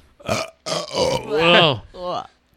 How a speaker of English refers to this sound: Whoops. Excuse me, I burped.